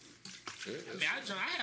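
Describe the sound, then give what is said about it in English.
Liquor splashes steadily into a cup for a couple of seconds, a bright gurgling pour with voices murmuring underneath, poured from a fifth bottle that is about half full. “I'm pouring a cup.”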